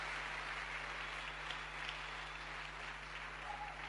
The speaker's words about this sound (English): Can we give her a clap offering as she comes in Jesus' name?